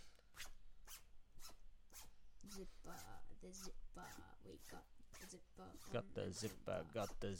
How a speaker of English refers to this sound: We've already got the first sound effect. There we go. The zipper sound effect. Could make a song out of that.